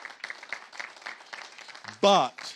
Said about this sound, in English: We do need it, but we're in the best position financially we've ever been in. Yeah, we can cheer about that.